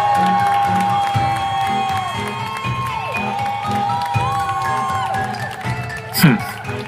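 A large crowd in a grassy area roars and cheers wildly after a man lifts a stone high above his head and releases it with a crash; a dense wash of excited shouts and whoops stays loud throughout, with a sharp burst of noise near the end.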